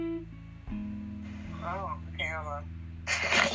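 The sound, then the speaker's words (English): Distorted, warbling phone-line audio caused by poor reception, with steady droning tones, choppy fragments of a voice breaking up, and a harsh burst of crackling static at the end. “No, because my phone is messing up because of the reception out here, so.”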